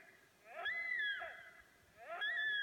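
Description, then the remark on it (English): A sika deer's hee-haw call sounds twice: each a loud, high, rising whistle that slides into a strained squeal, the second following after a short pause. No other sounds, no voices. “Seeker deer hee-haw. It's unreal, isn't it?”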